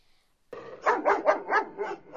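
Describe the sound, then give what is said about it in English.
A dog named Daisy barks in a quick, rhythmic series of about five or six sharp, mid-pitched barks after a brief silence, fairly loud and with no talking over it. “I will be your host for tonight with my special assistant, Daisy. Say hi, Daisy.”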